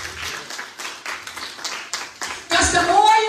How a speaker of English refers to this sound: So you got to clap your hands for yourself. Clap it. Let's give a big hand for yourself. Clap it.